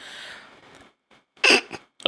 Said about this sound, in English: So I put it under my nose. So I'm sniffing it.